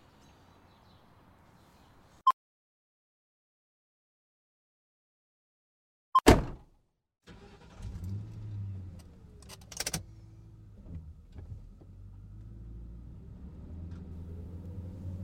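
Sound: getting into a car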